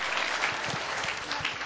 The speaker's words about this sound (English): All right, give them one last round of applause. Well done. Good job. Good work.